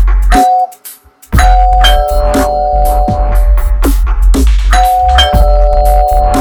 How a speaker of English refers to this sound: Ding dong, hello.